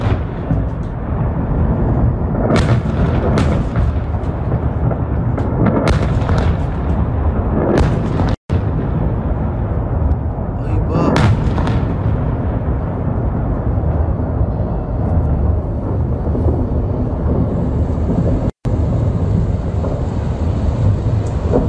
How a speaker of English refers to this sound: six Fatah 110 missiles have just been launched from, excuse the pronunciation, Tabriz, Iran, against the American consulate in Erbil, Iraq. Massive explosions have been recorded by Iraqi civilians near the consulate.